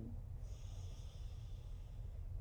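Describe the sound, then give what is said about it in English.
A slow, steady intake of air drawn through the nose during a breathing exercise, a soft airy hiss lasting a couple of seconds over a low rumbling background, fairly quiet, with no talking. “Breathing in through the nose.”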